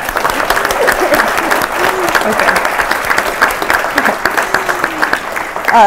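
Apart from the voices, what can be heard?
audience clapping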